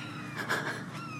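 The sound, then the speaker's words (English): A short, thin, whining bird-like call, voiced by a person in imitation, with a wavering high pitch that swells briefly in the middle before trailing off, heard alone. “It sounded like that bird.”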